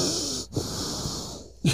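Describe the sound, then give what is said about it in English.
Heavy, wheezy breathing right into the microphone from a person getting over a cold, with airy inhales and exhales filling the short stretch and a louder snuffly breath at the end. No one speaks. “and you're breathing, like, right into the microphone.”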